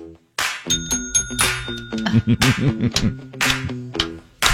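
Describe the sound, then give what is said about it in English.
A bright bell rings with a quick ding near the start of a radio song-guessing game, its high ringing tone lingering briefly before a lively tune with strong rhythmic low notes takes over. “Get your ringer dingers ready, or just kind of yell it at your radio as you listen if you know what song this is.”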